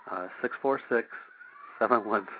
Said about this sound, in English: My poor cat's making her funny noises again.